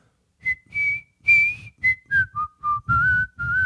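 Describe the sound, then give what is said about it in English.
A person whistles a short rock song melody, about nine clear pitched notes rising and falling in a song-like phrase, with brief gaps between them and no talking. “Come on, I just whistled it, man.”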